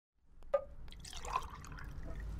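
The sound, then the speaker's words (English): A woman pours blue liquid from a pitcher on a table into a glass for herself to drink. It starts with a light clink, then a steady splashing stream continues for a couple of seconds, with no voices. “So this is the ad in response, and I need to tell you that there's a pitcher of blue liquid on the table, and this woman is pouring it for herself to drink.”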